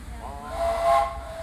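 A steam whistle at Disneyland, not the Mark Twain's whistle, gives one short, breathy blast over a steady hiss and low rumble, fading after about half a second.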